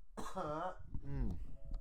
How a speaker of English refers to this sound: Not Corona coughs.